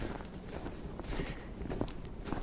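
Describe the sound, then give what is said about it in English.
Steady footsteps crunch through crisp snow on snowy forest ground on a sunny winter day, a soft rhythmic series of muffled crunches at a walking pace, with no voices. “I've been walking for about an hour now.”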